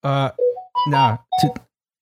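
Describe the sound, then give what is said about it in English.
A phone ringtone plays a short melodic tune in three quick bursts of warbling, hoot-like tones that slide in pitch, fairly loud, with no talking over it. “Did you have like an owl sissy ringtone?”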